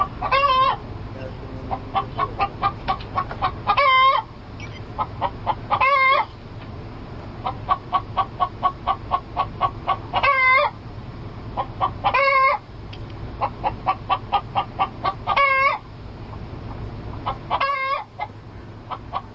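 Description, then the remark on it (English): A stolen chicken, taken from a tree at a private residence, clucks steadily, a rapid series of short clucks broken every couple of seconds by louder, drawn-out squawks, with a low rumble of background noise throughout. “So I stole one of their chickens.”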